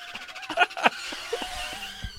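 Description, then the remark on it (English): A car brakes screeching sound effect: a brief, shrill burst of high squealing tones, two sharp peaks close together over a steady whine, loud, with no one talking. “Hit the brakes.”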